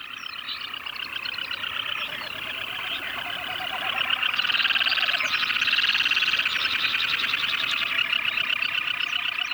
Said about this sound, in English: And this is what Tshakpuk Lake sounds like during the frenetic mating season. These birds were recorded by